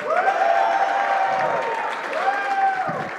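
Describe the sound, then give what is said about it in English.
An audience bursts into steady, dense applause mixed with loud whoops and cheers, the clapping sustained at an even level for about three seconds, as a vote by applause on a count of three for one of two contestants. “Let's hear a round of applause on three.”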